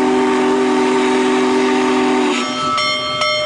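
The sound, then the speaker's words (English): A Union Pacific Big Boy steam locomotive in Fort Worth blows a loud, sustained chime whistle over a steady hissing rumble, the whistle's tone shifting and breaking up near the end as the engine churns on. “The Union Pacific Railroad bought one of the few remaining big boy steam locomotives to Fort Worth.”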